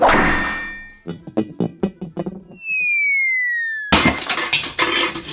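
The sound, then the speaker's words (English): A hammer smashes a glass lamp with a loud crash, followed by scattered tinkling shards, a descending whistle-like tone, then another burst of clattering noise. “Now don't be alarmed by this hammer in my hand.”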